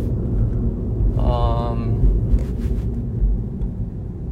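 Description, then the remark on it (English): A manual Mini Cooper S's exhaust rumbles low and steady, a brief tonal whine rises over it, then several quick, sharp crackling exhaust pops burst out before the idle settles back to a deep drone. “Sounds amazing. The exhaust pops, which a lot of people don't really know what that sounds like.”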